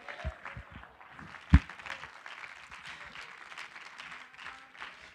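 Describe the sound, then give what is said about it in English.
An audience at a church service in Norman, Oklahoma claps steadily for several seconds in answer to a call to clap hands and shout yes, a dense wash of many hands at moderate volume, with scattered low thumps and one sharp knock partway through. “Clap your hands and shout yes.”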